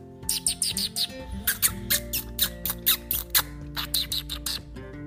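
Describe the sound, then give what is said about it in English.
A person squeaks like a squirrel to call squirrels in a tree, a rapid run of short, high, chattering squeaks in quick irregular bursts, fairly loud, with no talking. “maybe try squeaking like a squirrel.”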